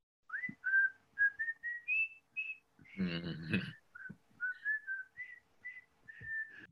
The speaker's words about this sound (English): Lo and behold, within several minutes, we heard this whistling from 110 boys and 30 staff coming, we later learned, from the senior ball field, all whistling